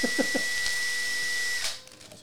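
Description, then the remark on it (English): A power drill whines loudly at full speed, steady and high-pitched, for about a second and a half before abruptly cutting off, with a brief murmur of a voice underneath at the start. “There's a drill running at max power.”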